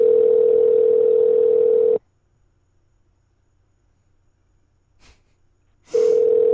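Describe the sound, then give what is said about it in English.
A phone's ringback tone on an outgoing call to a car dealership: a steady, mid-pitched electronic hum lasts about two seconds, stops for roughly four seconds of near silence, then starts again. No one speaks. “I'm going to leave a message if they don't answer. I'll just call the next one.”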